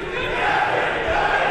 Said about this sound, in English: It's the Icebreakers there cheering themselves after a fantastic year by the Icebreakers. A great job by them. Their very first season.